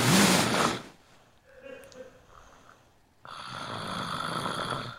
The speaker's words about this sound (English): There we go. Oh, a hot chick snoring.